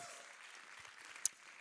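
A church audience applauds to give God praise again, in a steady, dense wash of clapping at a fairly soft level, with one sharper clap standing out near the end and no voices.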